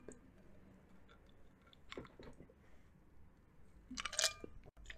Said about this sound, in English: You'll have to forgive me. That's the last of the ice noises. Just finishing up a half a glass of chai tea.